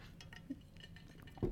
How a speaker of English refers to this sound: I'm going to take a sip of Coke.